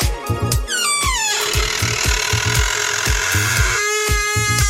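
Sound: creaking door opening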